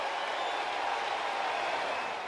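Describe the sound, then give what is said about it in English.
A large baseball stadium crowd gives a sustained standing ovation to pitcher Jacob deGrom as he leaves the mound, a dense, steady wash of clapping and cheering that holds at an even level throughout. “The standing ovation began before Buck even got to the first baseline.”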